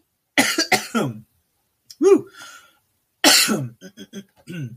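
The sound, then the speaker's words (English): A bout of harsh coughing and throat clearing from an itch in the throat comes in a few raspy clusters separated by short pauses, with a brief voiced exclamation mixed in. “Sorry, I'm getting an itch in my throat. I'm about to go into a coughing fit.”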